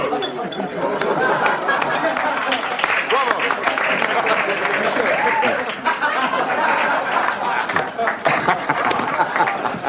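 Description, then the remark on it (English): In a film scene, a crowd laughs and claps as Doc mimics Johnny's gun handling with his tin drinking cup. Overlapping voices and scattered hand claps form a steady wash that stays loud and busy throughout, with occasional brighter clinks. “And as folks start to laugh and clap, the tension starts to diffuse, capped off with Johnny himself then grinning back at him as he walks away.”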